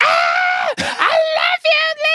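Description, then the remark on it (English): A voice imitates the shrill, high-pitched scream of a white woman fan at a concert: a long sustained shriek broken by a quick breath, then two more piercing bursts, loud with no talking. “They don't hit the particular frequency that a white woman hits that's just like but just sounds like nails”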